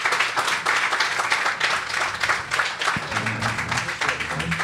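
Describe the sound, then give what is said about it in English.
A crowd claps steadily for several seconds for a person being thanked as a mentor and invited up, a dense, even wash of many hands at a fairly loud level, with faint murmuring voices rising underneath toward the end. “Let us give you a round of applause.”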